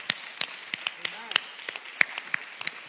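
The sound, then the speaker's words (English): Scattered applause from an audience, a loose, irregular patter of sharp claps at moderate volume, with a brief murmur of voices under it partway through. “I think that we need to give you a round of applause.”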